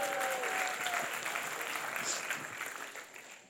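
A crowd applauds the helpers steadily with dense, crackling clapping that holds strong before tapering slightly toward the end, with a faint whistle-like tone briefly near the start.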